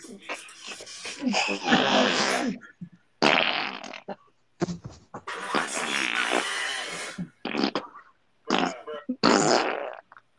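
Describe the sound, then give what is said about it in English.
A run of loud, sputtering fart noises, roughly seven or eight raspy bursts of varying length separated by short gaps, with no talking. “When Chris comes back and listens to this podcast, he's just going to hear us farting.”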